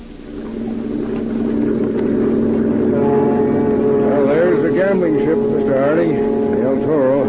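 A motor launch engine runs steadily, a loud, continuous droning hum with wavering tones rising and falling over it in the second half.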